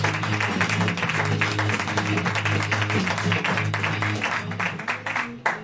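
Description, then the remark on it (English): An audience claps steadily for several seconds as a performer is introduced, a dense, continuous wash of many hands at an even loudness, with a low sustained musical tone running underneath and no speech. “I wait for you to stop clapping before I say that, just to make it inconvenient.”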